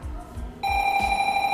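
A smoke alarm suddenly starts partway through, a loud, shrill, steady electronic tone that holds unbroken to the end over a faint, low rhythmic thumping in the background.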